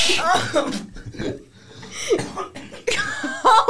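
Several loud coughing bursts come in uneven clusters, someone trying to clear gunk from their throat, mixed with breathy, laugh-like vocal sounds and brief pauses between them.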